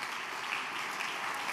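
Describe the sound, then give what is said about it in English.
An audience applauds the preacher for preaching that night, a steady dense wash of many hands clapping at once, even and sustained throughout with no voices standing out. “Why don't we give the man of God with the word of God a hand clap tonight for obeying the Lord.”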